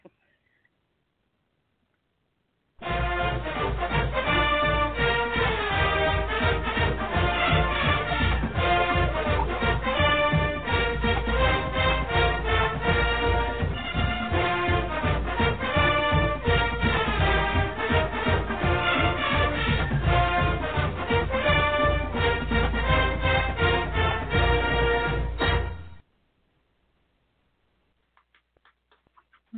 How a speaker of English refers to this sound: That was close to monkey sounds.